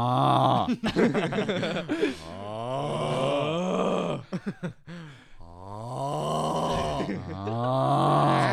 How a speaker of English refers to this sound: Every time I see one of those videos, dude, that audio itself just makes me die. Because it's just an edited version of somebody snoring.